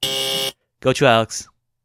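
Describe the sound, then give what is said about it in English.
A quiz buzzer sounds once, a flat, steady, harsh electronic tone lasting about half a second, followed after a short pause by a brief spoken phrase. “You're just buzzing in now.”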